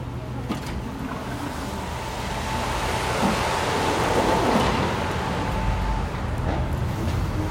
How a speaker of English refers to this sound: if you're wearing headphones, because we're about to go through a lot of loud cars, because there's a truck show going on outside.